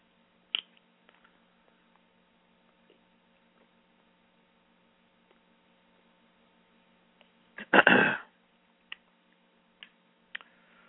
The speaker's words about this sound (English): Excuse me, let me drink some water.